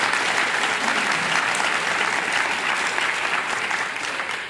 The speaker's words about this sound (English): This is a huge moment for us nationally to have San Diego officially recognized as an age-friendly community. Could we just do one more round of applause for this incredibly historic moment?